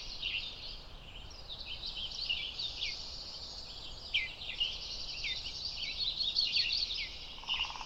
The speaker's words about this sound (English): Birds sound so much closer, too. Those woodpeckers we heard drumming before are now in the tree right next to us.